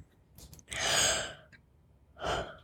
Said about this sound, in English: Why are we yawning? Your yawning is making me yawn. Don't do that. Yawns are always contagious. I know. Stop it. I'm sorry.